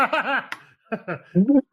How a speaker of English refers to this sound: Yeah, it's definitely goat. It's the bleeding goat.